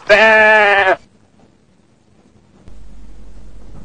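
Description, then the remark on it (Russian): A ram lets out one loud, wavering bleat lasting about a second, followed by near silence and then a faint, steady low hum. “Пусть эта крыса будет баран.”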